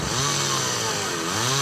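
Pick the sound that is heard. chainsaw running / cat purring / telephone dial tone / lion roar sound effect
chainsaw running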